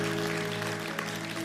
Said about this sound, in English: Let's give that young lady a round of applause.